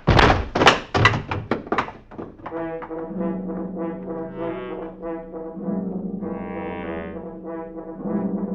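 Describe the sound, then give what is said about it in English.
A rapid series of about eight heavy, dull, loud blows, like hammer strikes, as a father and his daughter are bludgeoned to death, then gives way to a sustained, low, ominous tonal drone. “A father and his daughter were just bludgeoned to death.”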